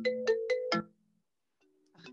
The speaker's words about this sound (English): So you're getting a FaceTime call.